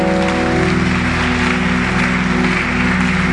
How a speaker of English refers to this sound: Keep clapping.